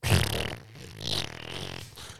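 A loud, sputtering fart lasting about two seconds, a buzzy low rumble that wavers and trails off, with no talking over it.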